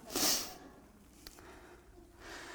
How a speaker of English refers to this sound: Got the sniffles tonight. I hate trying to preach with the sniffles.